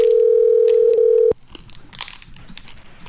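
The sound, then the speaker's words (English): A telephone rings on an outgoing call: one steady electronic ring tone lasting just over a second, cut off abruptly, followed by quiet crunching and chewing noises of someone eating a ring pop, with no talking. “answering Scott Ian's phone”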